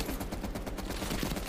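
automatic gunfire

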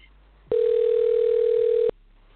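telephone dial tone

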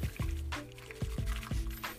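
tea being poured

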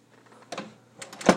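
apartment door being closed

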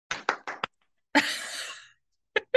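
hand clap

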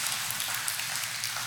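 audience applause

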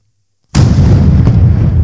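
cannon fire sound effect

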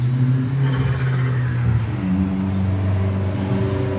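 car engine revving

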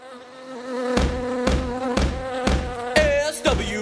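swarm of bees buzzing

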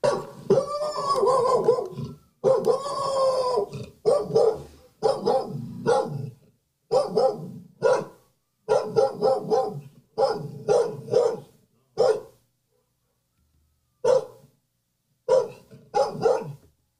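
dog barking

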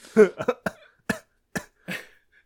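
cough

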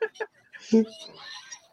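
chicken clucking

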